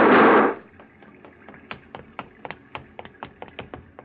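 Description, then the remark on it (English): Gunshots fired by a night watchman, Pop Willis, in darkness as a car is driven off a barge after a river crossing: a loud, harsh burst opens, then a quick run of sharp, crackling shots fires off at a steady rapid pace, each short and snapping, fainter than the first blast. “Oh, I didn't like those shots”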